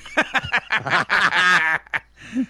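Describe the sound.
A person imitates a duck, making a rapid run of loud, nasal quacking vocal bursts, with a couple of short, fainter quacks trailing after a brief pause.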